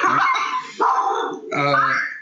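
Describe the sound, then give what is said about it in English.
Three loud, drawn-out dog barks in quick succession, somewhat whiny, like yipping or yowling, each lasting most of a second with barely a pause between them. “I hope it's a dog and not a kid.”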